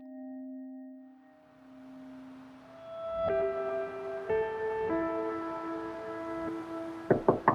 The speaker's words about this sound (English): knocked on the front door of the brick duplex.